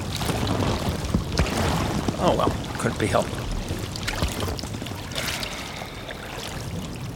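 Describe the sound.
A man urinates in a boat, a steady stream of liquid splashing and trickling close by against a washy background, while a man's voice speaks briefly over it.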